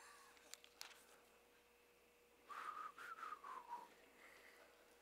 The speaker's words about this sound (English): I can't whistle either.